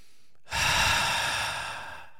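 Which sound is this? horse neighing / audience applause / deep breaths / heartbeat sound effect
deep breaths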